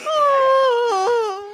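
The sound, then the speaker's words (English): Uhura, a woman, whimpers in one sustained, tremulous high-pitched note that slowly dips and wavers as the crew feels the effects of the pressure, fairly loud and without other talk. “The crew now begins to feel the effects of the pressure.”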